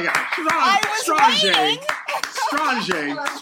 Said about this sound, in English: Wow. I got to clap for that.